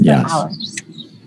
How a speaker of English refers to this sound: I love the beauty and the birds in the background there from wherever you are.